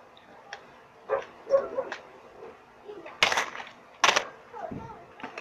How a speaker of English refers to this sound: Damn dogs.